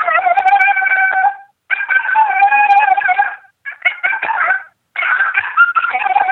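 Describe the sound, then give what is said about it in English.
A female coyote gives a yodeling howl in four long, wavering bursts separated by short pauses, the pitch breaking and warbling up and down, loud with no voices. “Here's female yodel howl.”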